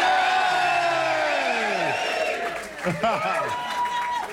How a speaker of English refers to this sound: Ladies and gentlemen, a cheer for Mr. James Haskell. And a cheer for Mr. Mike Tindall.